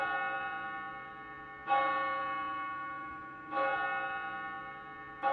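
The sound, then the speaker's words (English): A church bell in New York City tolls slowly and steadily, ringing to warn people to evacuate the city as Martians approach; each resonant strike rings out and fades before the next arrives about every two seconds, with no voices present. “The bells you hear are ringing to warn people to evacuate the city as Martians approach.”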